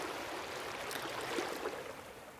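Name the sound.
flowing stream water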